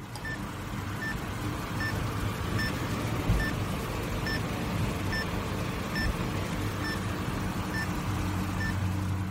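A Boston Scientific implantable defibrillator alert tone: about eleven short, high, evenly spaced beeps, roughly one per second, sounding over a steady low rumbling background noise.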